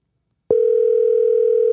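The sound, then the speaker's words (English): A telephone dial tone comes on abruptly after a brief silence as someone tries to place a phone call again, holding as a loud, steady, unbroken hum, with no voices. “Let's try the phone one more time.”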